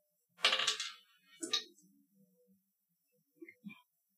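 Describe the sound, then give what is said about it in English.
Dice clatter across a hard tabletop during a tabletop game in a sharp rattling burst, a second quick tumble follows, and a few faint clicks come as they settle. No voices. “I think it just gives you 1 extra... or 2 extra die, so you'd have 9 dice.”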